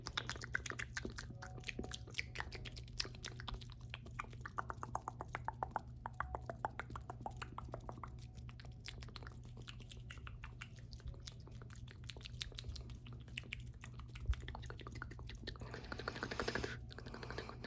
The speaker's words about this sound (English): So now we can do some mouth sounds.